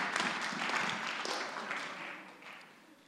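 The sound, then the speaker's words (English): An audience breaks into applause, a dense wash of many hands clapping at once, steady and fairly loud before gradually tapering off over about three seconds. “You can clap.”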